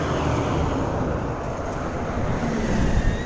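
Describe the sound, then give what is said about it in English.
Steady low rumble of road traffic going past, a continuous engine and tyre roar that stays fairly loud and even throughout, with no one talking. “Traffic.”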